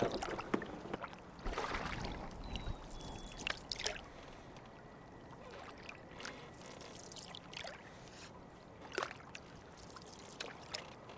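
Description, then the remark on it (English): Irregular splashes and swishes of a canoe paddle dipping into the calm water of Bubbly Creek on the South Branch of the Chicago River, with soft trickling and gurgling between strokes and a faint hum of the surroundings behind. “So this canoe is just a bit tippy. We should get in one at a time.”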